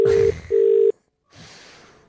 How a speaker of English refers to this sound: We're ringing him. He's not going to answer his phone.